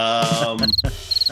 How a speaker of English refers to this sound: there's the crickets again.